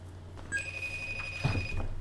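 A phone call ringing out as someone is called back: a steady electronic ringback tone begins after a brief pause and holds evenly through the rest, moderately loud, with faint background noise underneath.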